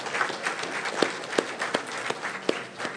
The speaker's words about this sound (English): Feel free to clap, yes.